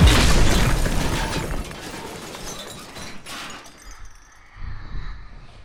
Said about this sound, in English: The doors closed and the elevator started down. There was shrieking and screaming. And the sound of a crash.